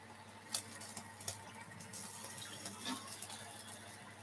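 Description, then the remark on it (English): Liquid stock pours steadily into a pot for a soup or stew, a continuous soft splashing stream with a couple of brief clinks near the start, fairly quiet, with no one talking. “With soups and stews, it really is up to you how much stock or water you add anyway”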